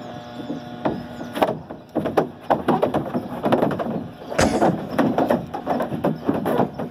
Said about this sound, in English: Sadly, there's no water in the slide. You can hear the cow's hooves clattering along, and you don't get to see the cow actually make it to the bottom of the slide and kasploosh into the water.